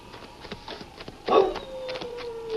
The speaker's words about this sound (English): Must be Prince, old Limp's dog.